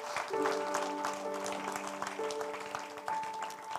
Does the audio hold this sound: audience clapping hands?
yes